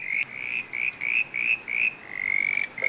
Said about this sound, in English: Yeah, it's a banjo frog sitting next to him.